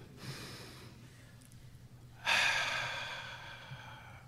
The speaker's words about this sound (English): So, if you're ready, let's take a deep breath.